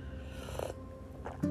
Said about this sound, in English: Oh, gotta clear my throat.